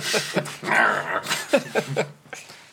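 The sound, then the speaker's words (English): A dog whimpers, a few short, high, thin whines rising and falling over a couple of seconds, with soft breathy sounds between them. “Clever dog. Clever girl.”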